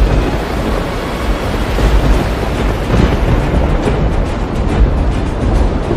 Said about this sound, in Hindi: एक दिन समुद्र में भयंकर तूफान आया।